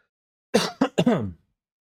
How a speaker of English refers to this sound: One day I'll get rid of this cough, I swear.